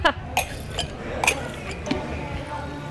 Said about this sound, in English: Let's go have a taste. I can just go pour us a couple samples. Okay. And then we can taste.